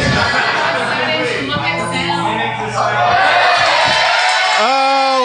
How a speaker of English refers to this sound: They can hear it. Your cheers are outweighing the noise.